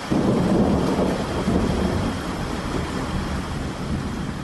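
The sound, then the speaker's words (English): A steady, loud wind and rain storm with a deep rumbling roar and constant hiss of rain, sustained throughout with no voices. “Are you one of those weirdos that love wind and rain?”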